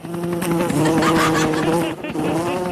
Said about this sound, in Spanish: Una así mosca jangueando allá en la 100. Así es, en la 100. De lado a lado.